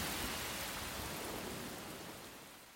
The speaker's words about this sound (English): Oh, man. Rain. Great.